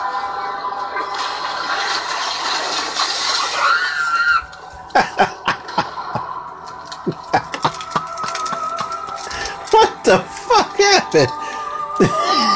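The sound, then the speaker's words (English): A man in a horror movie screams and shrieks in strained, wavering bursts, broken up by sharp cracks and clattering hits, after a few seconds of loud rushing, hissing noise at the start. “Was that Pumpkinhead or was that the guy that screamed?”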